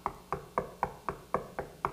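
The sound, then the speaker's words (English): Knocking on a door: eight sharp, evenly spaced raps in a quick, steady rhythm, each with a hollow mid-pitched thud and short decay, with no voices. “How many ghosts stand outside knocking?”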